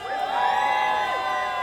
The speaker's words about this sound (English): So give me a cheer if you're from Macclesfield, if you're a local.